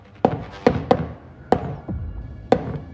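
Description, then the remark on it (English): Sharp, hollow knocks rap a shave-and-a-haircut pattern on a wooden door from inside a closet, about five or six solid thuds with pauses between them, fairly loud with no voices. “But the knocking didn't stop. Shave and a haircut continued to sound from her closet, each time growing in intensity.”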